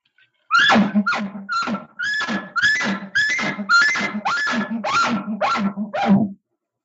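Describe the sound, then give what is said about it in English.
A game call sounds a rapid, loud string of about ten aggressive chuckling notes, each a short throaty burst with a low thump, with no talking. “So now the aggressive chuckles.”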